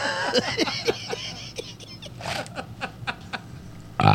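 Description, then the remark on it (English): Someone makes a series of short, wet, sputtering mouth noises imitating a queef, irregularly spaced bursts, with a louder burst at the end. “Queefing machine.”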